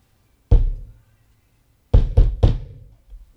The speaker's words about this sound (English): It was like they said succinct knocking. They described it like this.